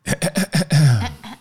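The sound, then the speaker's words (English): Someone clears their throat: four quick rasping bursts, then a longer voiced rumble that slides down in pitch before trailing off. “Excuse me, let me clear my throat.”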